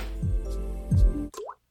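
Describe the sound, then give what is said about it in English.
Water drips in a short series: two soft drops about a second apart over a low background hum, then a final bright plop with a rising, bubbly tone before silence. “A little splish splash, you know?”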